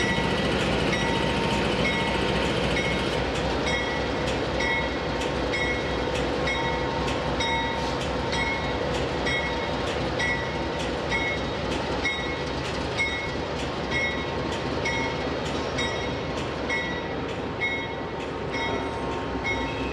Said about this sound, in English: Let's watch the train for just a moment here.